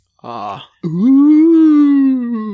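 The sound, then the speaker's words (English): A short, sharp voiced gasp followed by a long, sustained eerie moan that holds steady and then fades, loud, with no speech. It is a spooky sound-bite effect. “you need the gasp one.”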